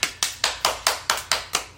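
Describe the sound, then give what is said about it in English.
Hands clap in a steady rhythm, about eight sharp, bright claps at a quick even pace, each with a short fading tail, with no voices over them. “Giỏi quá, vỗ tay là clap hands, vỗ tay.”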